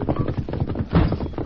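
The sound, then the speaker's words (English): Rapid, rhythmic hoofbeats of the horse Silver galloping away as a runaway, clip-clopping loudly and steadily, the quick beats running together into a continuous pounding patter. “And the horse is running away!”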